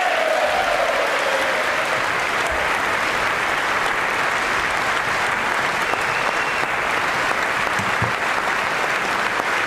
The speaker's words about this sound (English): Now watch, you can see her ask her friend, are we cool with this? And then they get up and they start clapping. You saw that.